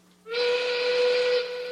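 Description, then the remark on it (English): A steam locomotive's whistle blows in one sustained, loud blast, steady and harmonic-rich, starting abruptly and holding for over a second with no talking. “And that is your siren's call. It's a train whistle.”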